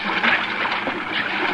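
Rushing river water pours in a steady, dense hiss and roar that holds an even loudness throughout, with no voices or other sounds breaking through.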